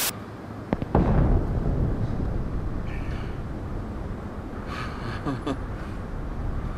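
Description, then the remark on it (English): A big explosion of a dam being blown up in a film goes off with a couple of sharp cracks, then a heavy, roaring rumble that keeps thundering for several seconds, with no voices. “A dam is blown up in this one, so you know, mass explosions slash violence equals mainstream appeal, the classic American equation.”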